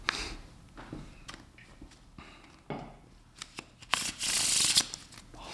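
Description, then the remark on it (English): A deck of playing cards being shuffled: a series of quick papery flicks and taps, ending in a longer, louder riffling burst as the cards cascade together. No one speaks. “I'm going to show you something something with my cards here. We're going to give them first a little shuffle.”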